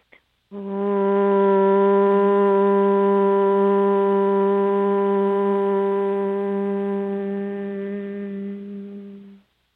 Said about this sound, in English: If you feel comfortable, take this moment to chant Om with me or just listen to the sound as it vibrates through this fluid body.